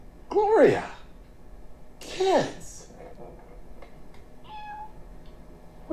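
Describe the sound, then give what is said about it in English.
A cat meows twice, fairly loud, each meow a drawn-out call that slides downward in pitch, with a short pause between them and quiet background afterward. “a cat.”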